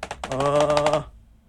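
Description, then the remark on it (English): A quick burst of keyboard tapping, struck rapidly like a drum roll, with a few separate clicks first and a buzzing tone running through the fast middle stretch before it stops. “And that question is, drum roll, I'm using my keyboard.”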